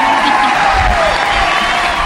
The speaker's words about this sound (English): Yeah, we're cheering it on.